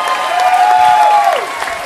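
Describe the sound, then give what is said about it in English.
Light audience applause during a moment for Don Rickles, a steady patter of scattered clapping that lasts about two seconds with no talking, and a thin whistle-like tone rising and falling briefly in the middle. “Light applause.”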